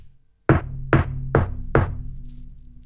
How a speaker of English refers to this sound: I'm going to knock on the door, see if Francois is home.